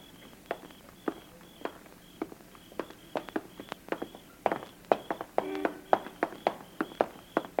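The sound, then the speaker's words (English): Footsteps walk at a steady, brisk pace on a hard surface, roughly two crisp heel strikes per second, with no talking and a faint constant background hum. “Just keep walking”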